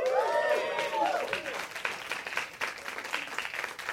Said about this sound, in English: Somebody's clapping, right?